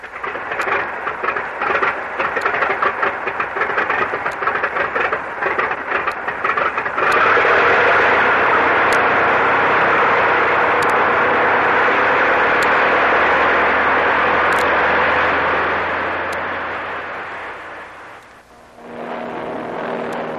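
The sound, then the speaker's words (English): An airplane engine drones loudly in flight over the area where a storm struck the Manila Merchant, rough and sputtering for the first few seconds, then settling into a smooth, steady roar that dips briefly near the end before resuming. “According to the chart, Tony, we've been flying over the area where the storm struck the Manila Merchant.”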